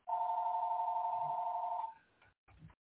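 A steady, loud electronic telephone tone holds for about two seconds, then cuts off into a few faint clicks and a short rustle before silence.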